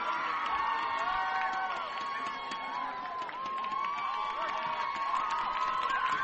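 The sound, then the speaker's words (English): A large stadium crowd at a football game cheers and shouts continuously, a dense roar of many voices with occasional higher whoops rising above it, steady and fairly loud throughout. “As Channel 7 is here, shooting the crowd. That's why you hear the noise in the background.”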